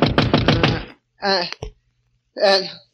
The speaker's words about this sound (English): Then I fell into a deep sleep, and then... A knock on the door awakened me.